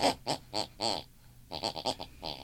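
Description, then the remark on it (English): Rhythmic snoring of a woman in the room next door, snoring the tune of what she listened to and watched before bed, with a tuneful, pig-like snort: a run of short raspy bursts, a brief pause, then a quicker cluster of snorts. No talking. “Her unconscious mind picks and pulls, and she snores that very tune.”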